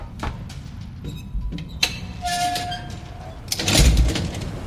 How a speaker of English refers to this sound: I was off and running, throwing open the metal door and drawing a bead on the big floating coffin.